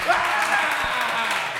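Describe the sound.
An audience, asked to applaud, breaks into a steady wash of applause that fills the whole stretch, dense and fairly loud, with voices cheering and calling out through it.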